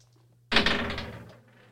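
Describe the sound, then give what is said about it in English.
Dice are rolled for the Pub Beer Crapshoot game, tumbling across a hard surface in a quick burst of clattering knocks that rattle and settle within about a second, coming up seven, over a low steady hum. “All right, roll those dice, and we'll tell you what our friends at Pub Beer want you to do.”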